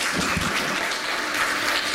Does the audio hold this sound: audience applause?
yes